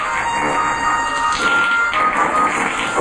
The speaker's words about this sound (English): No, you're not hearing things. This Asian kid is actually farting out the theme to Star Wars.